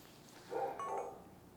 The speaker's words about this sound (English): The dog needs to stop barking. All right. Hold on. Let me tell the dog to shut the fuck up.